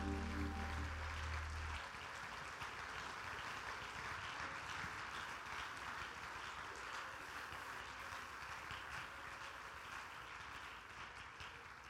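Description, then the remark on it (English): A large crowd claps steadily and continuously for several seconds to give praise to God, a dense wash of hand claps, with a low sustained chord sounding briefly at the start. “One more time, would you clap your hands and give him some praise?”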